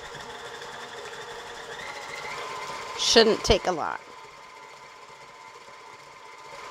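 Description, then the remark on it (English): An electric mixer beats cookie dough containing molasses and egg with a steady, whirring motor hum throughout, broken midway by a brief burst of high squeaks and rattling from the mixer. A person speaks briefly over the noise. “So now that the molasses and the egg are in, we're just going to beat it all together, beat it really well until it's all combined.”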